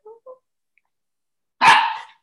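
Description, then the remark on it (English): A dog gives a single loud bark after two faint, short whiny yips and a brief pause, with no talking. “And you know, he's not a dog that barks that often.”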